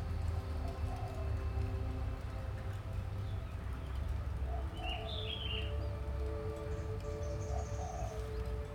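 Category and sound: bird, birds singing outdoors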